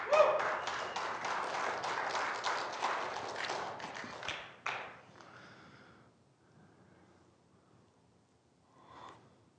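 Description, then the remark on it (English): An audience claps for Jesus, bursting into loud, dense clapping that lasts about four seconds, then quickly thins out and fades into a faint murmur, with a brief soft sound near the end. “You can clap for Jesus.”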